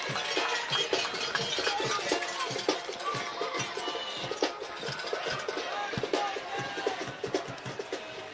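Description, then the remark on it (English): A packed, standing-room-only football crowd in San Andreas cheers and roars steadily as the Calaveras Redhawks run out onto the field before kickoff: a dense wash of voices with scattered claps and shouts poking through, holding at a loud, even level the whole time. “It looks like 3:40 left here before kickoff, and here come the Calaveras Redhawks running out onto the field, and the crowd is showing their appreciation for their efforts.”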